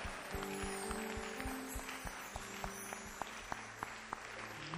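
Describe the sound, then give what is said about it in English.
A crowd claps hands in a steady, fairly quick rhythm during worship, responding to a call to clap and receive double in the name of Jesus Christ; the sharp claps cut over sustained low keyboard-like tones, with no talking. “If you clap your hands, receive double in the name of Jesus Christ.”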